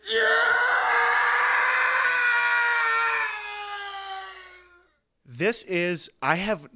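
A loud, drawn-out stock movie scream known as the Howie Scream holds for nearly five seconds, sliding slightly down in pitch as it fades out, then a few short, clipped vocal bursts follow after a brief pause.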